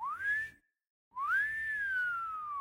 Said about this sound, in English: But even so, Jacqueline was startled when, one cool day in February, a long, slow wolf whistle pierced the air.